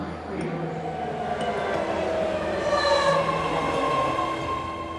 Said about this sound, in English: Your train is here. That was great timing.